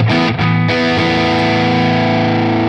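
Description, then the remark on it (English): A loud, saturated overdriven guitar amp tone, with the level around unity, drive at about 2 o'clock and presence about 1 o'clock: a few quick choppy chord hits in the first half second, then a thick distorted chord rings out and sustains steadily with no talking. “Level around unity. Drive is up maybe 2 o'clock.”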